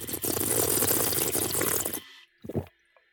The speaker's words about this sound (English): She leads me to the fountain. I bend down for a fateful sip of the horror water. I slurp.